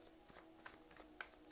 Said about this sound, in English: I am shuffling the Tarot Mucha. I cannot guarantee that you will hear me shuffling the whole duration of this reading, but based off of faith, we will go from here.